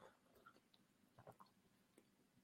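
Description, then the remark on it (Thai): Quiet sipping of water: a few small wet slurps and mouth clicks in quick, irregular succession, with no talking. “ขออภัยกับจิบน้ำหนึ่ง”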